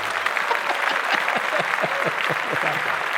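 Steady applause from a small group, a dense patter of overlapping hand claps that holds at a constant, fairly loud level for the whole few seconds with no voices on top.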